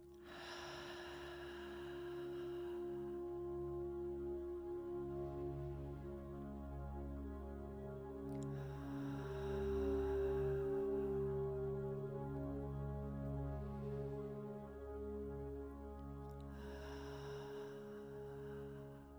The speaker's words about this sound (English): And taking a few nice deep long breaths.